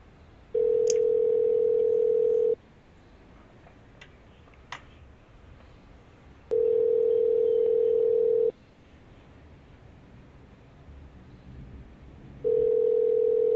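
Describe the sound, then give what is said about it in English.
A telephone ringback tone from an outgoing call sounds three times, each steady, buzzing ring lasting about two seconds and separated by roughly four seconds of quiet line hiss with a few faint clicks. “So we're going to go ahead and give him a call right now, live, and see why the fuck he's not on here. So, oh, it's ringing.”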